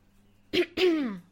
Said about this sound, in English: Gotta get that little cough out of my throat.